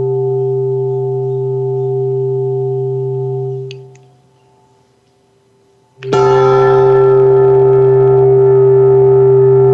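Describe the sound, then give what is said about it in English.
A heavy, very low-pitched bell weighing about 9 pounds rings out with a long humming resonance that fades, then is struck again sharply, its deep tones and bright overtones sustaining loudly. Alone, no talking. “I'll play a very low bell now, okay?”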